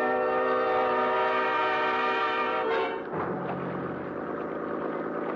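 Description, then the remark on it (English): An outboard motor boat with a 50-horse outboard roars steadily across a lake at night at better than 30 miles an hour, its loud buzzing whine holding an even pitch before dropping midway into a lower, rougher churning drone. No one speaks. “And the 50-horse outboard skimmed us along at better than 30 miles an hour.”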